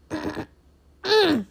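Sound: throat clearing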